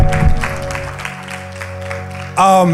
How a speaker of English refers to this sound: And God's people shout, amen and amen. Can you give the Lord a strong clap offering of praise?